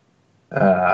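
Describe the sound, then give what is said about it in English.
After a brief silence, someone coughs and gives a single loud, rough throat clearing of a morning voice, with a buzzing, voiced tone that lasts about half a second and continues to the end. “… kind of coughs and clears the throat of the morning voice for a minute.”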